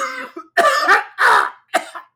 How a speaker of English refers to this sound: That's going to blow your ears out if you're listening to this in your headphones while you're working out. So I apologize on behalf of my coughing, lung, incapacitated husband.